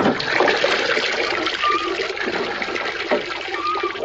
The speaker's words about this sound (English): I'm touring the room with all my water equipment in it right now. Pretty loud in here.